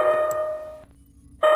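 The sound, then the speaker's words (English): A proximity alert alarm, set up to warn if the Corinthian army comes, sounds a loud, steady electronic tone with buzzy harmonics, cutting off for about half a second before blaring again, with no voices. “That's the proximity alert I put in place in case the Corinthian army came looking for us.”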